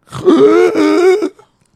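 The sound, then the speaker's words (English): A man imitates the strangled, choking gasp of a man who stopped breathing in his sleep during a spa foot massage: one loud, drawn-out groaning rasp lasting about a second that cuts off abruptly with a faint catch at the end. “And we thought he had stopped breathing and he had in his sleep.”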